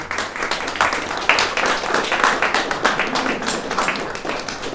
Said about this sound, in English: A big thank you also goes to all of the contractors who've had to work very hard on a very tight schedule to help make this hub a reality. I think they all deserve a round of applause.